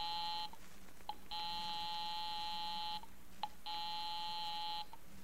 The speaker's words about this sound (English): I'll give 9B a ring first on the house phone.